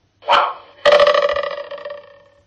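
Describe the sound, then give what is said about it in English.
A dog barks, used as an audio clue for the word "bow" in a sound puzzle whose answer is rainbow: one short, sharp yelp, then a longer, drawn-out bark with a wavering, pulsing tone that fades over about a second and a half. No one speaks. “Was bow. And the answer was rainbow.”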